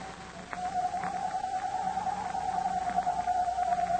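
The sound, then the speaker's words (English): A voice imitates a hoot owl's screech as one long, wavering, high-pitched tone held steadily for several seconds over a faint low hum, with no talking. “imitating the screech of a hoot owl.”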